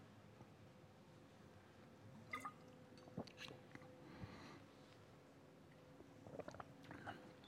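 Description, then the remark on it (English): Quiet mouth sounds of someone slurping a drink, with a few brief wet sips and swallows scattered over several seconds against a low background hum. Nobody speaks. “I'm just going to take a slurp and then we'll dig into this passage.”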